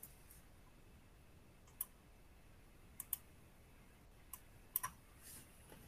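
A handful of soft, sharp clicks from a computer mouse and keyboard as someone clicks the gene option and types a gene name to search the HMD Professional database, spaced irregularly with a couple in quick pairs, against a quiet background with no one speaking.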